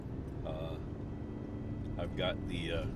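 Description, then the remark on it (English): A steady, droning rush of car air conditioning fills the cabin, constant throughout, with brief fragments of a voice rising over it, on a warm autumn morning in October after the car had been sitting in the sun. “I've got the air conditioner on, but I'm not sure it's quite needed.”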